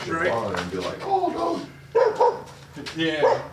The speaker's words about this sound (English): Boba, take her inside so she stops barking.